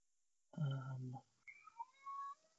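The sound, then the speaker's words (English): A cat outside a door lets out one loud, drawn-out meow, followed by a few thinner, high-pitched whining calls, with no talking. “This cat's going mental outside my door here.”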